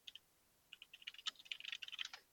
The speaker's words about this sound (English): Here, more typing.